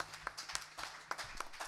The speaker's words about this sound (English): Let's clap about that. Let's clap about what God has done.